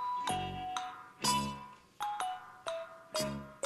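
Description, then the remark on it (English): A rapid cascade of bright, ringing chimes, about seven sharp metallic strikes at varying pitches, each with a shimmering decay, tumbling one after another with no voices. “And now it just suddenly, a waterfall of chimes just happened.”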